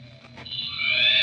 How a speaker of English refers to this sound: Holmes, what the deuce is that? Is it human? It's a cheetah, Watson. Dr. Roylott's cheetah.